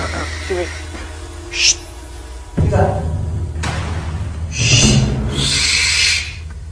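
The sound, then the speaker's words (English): A person's voice mimics an owl, giving a few breathy, hooting calls in short bursts, with some hissy, airy noise between them. “Now we're doing an owl.”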